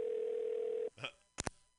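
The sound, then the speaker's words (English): A steady, mid-pitched phone line tone as a caller's line drops during a radio show holds for almost a second and then cuts off, followed by a faint rustle and two sharp clicks. “No, it just beeped like someone's gone.”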